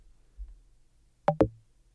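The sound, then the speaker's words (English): A short percussive 'try again' interface cue, designed to feel like haptic feedback, made of two quick thumping hits in rapid succession, dull and low with a brief bright click on each, fairly loud against an otherwise quiet background. “Here's try again.”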